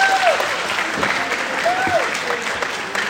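An audience of boys and girls at a yeshiva applauds the rabbi who directs their Navi studies, a dense, even wash of many hands clapping for about three seconds, with a few faint whoops or whistle-like cries rising over it.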